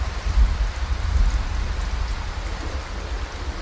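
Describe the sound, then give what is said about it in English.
Steady, heavy rain from a storm on an island hisses across a broad band while low gusts of offshore wind rumble and swell underneath at the edge of a cliff, the roar surging slightly around the first second and a half. No voices. “Braving the storm, compelled by some unconjured courage or folly, you are now standing on the edge of a cliff”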